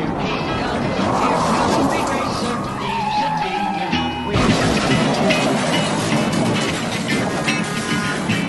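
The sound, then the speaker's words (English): Race cars roar past with a squealing skid, followed by a sudden loud crash partway through as one car goes up and over another, then continued dense engine and crowd noise. Indistinct voices can be heard beneath the din. “That's the rookie Suarez up and over Regan Smith, the big one in the trouble trial.”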